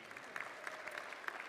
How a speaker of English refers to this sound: So again, if you're excited about Sharon being a part of the body here and welcoming her in as your sister at the body, let her know by giving her a round of applause and saying amen.